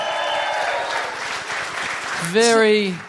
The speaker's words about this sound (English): Good on you. Give yourself a round of applause for doing that.